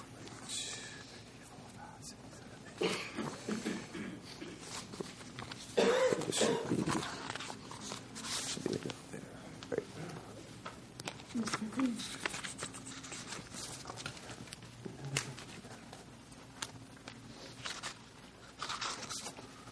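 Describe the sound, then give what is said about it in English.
Paper handouts are passed around, with repeated crisp rustling and shuffling of sheets, some louder bursts, and faint background murmuring and movement throughout. “And that would, you know, let me hand this out to you, and this will be kind of your last handout.”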